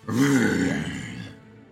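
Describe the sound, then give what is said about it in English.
A person voices a low, rough growl, imitating a chain-wielding creature, held for about a second before trailing off. The guttural vocal sound is loud and stands alone without any speech. “And it just growls.”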